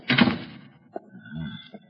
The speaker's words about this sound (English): Hey, shut that door.